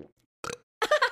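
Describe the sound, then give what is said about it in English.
Two loud voiced bursts with a throaty, gurgling tone, a short one followed by a longer one after a brief pause: a real, loud burp made on command. “Sorry, that's a little gross, but yeah, I can burp on command.”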